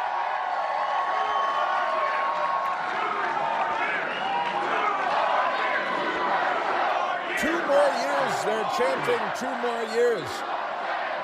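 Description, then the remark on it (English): A large crowd at Ron DeSantis's Florida election victory speech roars and cheers steadily, a dense wash of many voices, with rhythmic shouted chanting of "two more years" rising out of the din in the second half. “They're chanting two more years.”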